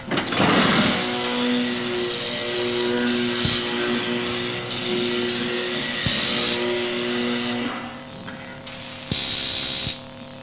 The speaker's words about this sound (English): Did you get to hear our electric chair sounds